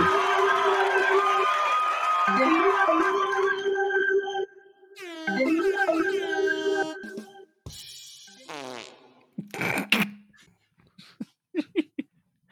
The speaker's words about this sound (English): Oh, the fart. Why is there so much reverb on it? Because it's fart reverb.